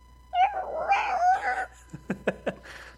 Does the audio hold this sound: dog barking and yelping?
yes